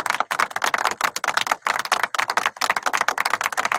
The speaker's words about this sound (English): Now, I'm not clapping for the name Commanders. I'm just clapping for the demise of football team.